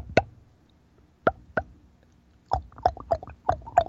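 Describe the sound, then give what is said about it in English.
A caller clicks his tongue and pops his lips together as if spitting a hair off them, imitating a bull elk's glunk: a lone pop, a spaced pair, then a quicker run of about six hollow, moist pops, with no talking. “I'm clicking my tongue, popping my lips together like I'm spitting a hair off them. And see, it's simulating a glunk.”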